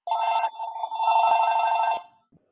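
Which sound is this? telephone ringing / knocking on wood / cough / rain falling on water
telephone ringing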